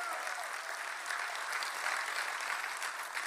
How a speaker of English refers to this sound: And then a special shout out to our family in partnership from SCI Chester in partnership with God Behind Bars. Can you show them some love too? Clap for them.